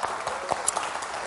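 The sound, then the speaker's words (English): A church audience in Saipan applauds steadily, many hands clapping at once in a dense, continuous patter, with no voices standing out. “Let's give a big round of applause.”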